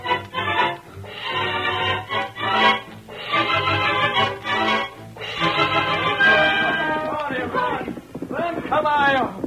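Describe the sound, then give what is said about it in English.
Galloping horse hooves pound steadily beneath loud, excited voices that shout and call out over the rhythmic clatter throughout. “Ride hard, my little one, ride hard.”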